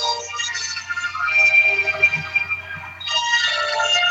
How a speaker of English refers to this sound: I'm so sorry. That was my cell phone.